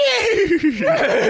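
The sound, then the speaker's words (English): A person imitates a horse whinny with a loud, quavering neigh, the voice fluttering and wavering in pitch for about a second and a half. “Oh, that's a winnie. Give us a nay.”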